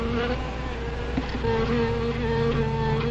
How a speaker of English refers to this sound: Wasp, you better be careful. They can sting a man to death.